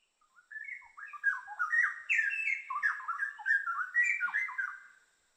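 A straw-headed bulbul pours out a loud, bubbling song of rich, rolling whistled phrases, sung continuously for several seconds, clear with no other sounds or voices.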